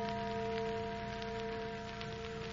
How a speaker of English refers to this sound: Church bell. Well, there aren't any churches around here. Oh, sure there is. That little old church down at the other end of the valley.